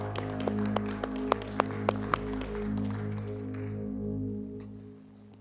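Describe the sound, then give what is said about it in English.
A church audience claps their hands in worship and praise over sustained organ-like music, the sharp claps scattered and uneven at first, then thinning out and fading as the music holds on. “Come on, let's give Him a hand clap of worship and praise.”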